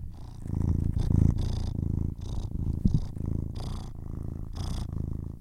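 A cat sitting beside the speaker purrs in a steady, rumbling rhythm, each breath cycle swelling and easing over several seconds, with no one speaking.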